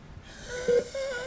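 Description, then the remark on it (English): A patient's breathing machine in a hospital hisses with airflow and gives two short whistling, wheezy tones in quick succession, fairly quiet, with no one talking. “Oh, that's his breathing machine.”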